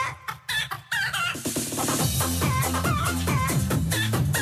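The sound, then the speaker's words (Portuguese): Chickens cluck loudly and a rooster crows, first in scattered bursts, then layered over a steady, thumping rhythmic beat that continues to the end. “As galinhas e galos chegaram como? Pelas caravelas, junto com os portugueses.”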